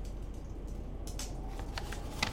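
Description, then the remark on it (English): Soft rustling and crinkling of an invitation letter dated May 1st, 1925 being handled, with several brief scratchy bursts scattered over a quiet low hum, and no voices. “Now, just holding this, touching this piece of paper is powerful.”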